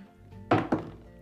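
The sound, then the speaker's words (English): A d20 die is rolled onto a table, landing with two quick, hollow knocks about a fifth of a second apart, then settling into quiet. No one speaks. “So really what I like to do is roll up my d20, and that number usually represents the ongoing luck of that dice.”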